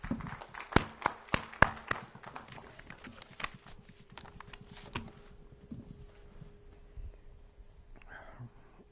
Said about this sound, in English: And now, help make our pastor feel appreciated and welcome. Let's give him a nice applause.